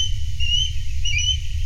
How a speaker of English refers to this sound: Okay, let's go to the osprey, big hunting bird. And this was recorded at the Grand Teton National Park, again in Wyoming.